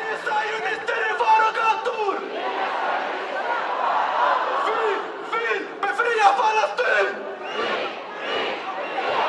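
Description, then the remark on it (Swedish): A large crowd at a rally in central Stockholm in 2023 shouts the slogan "no Zionists on our streets" together. Many voices merge into a loud, continuous roar that rises and falls in rhythmic bursts, with a leading voice calling out over the mass. “De skanderade också inga sionister på våra gator, även om han som ledde skanderandet skrek inga sionister i våra gator.”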